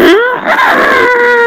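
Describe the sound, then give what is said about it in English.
A human voice imitating a bird call: a loud, sustained, wavering whistle-like cry that rises sharply at the start and holds a quavering pitch for over a second. “I could, like, I know bird call, so if you just let me piggyback on you and let me bird call into the vent, I think you can reach her pretty well.”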